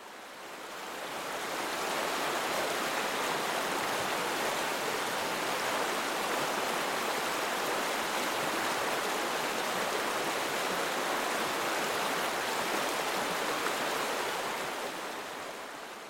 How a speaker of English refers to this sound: And yet another angle, the river flowing into the ocean, at once diffused into what is much bigger than the loud roar of moving water.